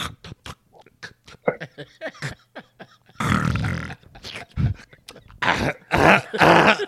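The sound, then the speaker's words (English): A voice imitates snoring and throat clearing: a run of quick clicks and smacks at first, then loud, gravelly snorts and raspy hawking bursts with short pauses between them. “That nigga's like, that nigga got the nerve to clear his throat.”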